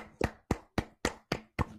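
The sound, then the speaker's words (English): A short run of about six hand claps in a steady, fairly quick rhythm, each a sharp smack with a brief decay, applauding the shower food review guy for reaching 60,000 Twitter followers. No one speaks. “Can we clap it up for him? Yeah, we'll clap it up for him.”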